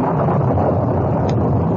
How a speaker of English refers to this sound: By the time they reached the horses, wind began to blow strongly and lightning crackled around them.